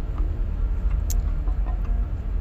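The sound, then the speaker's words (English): A car brakes suddenly over a steady low road rumble, with one sharp, brief jolt or knock midway and no one speaking. “Brakes. Good.”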